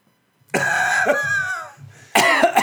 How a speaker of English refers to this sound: Are you going to edit that cough out or just leave it?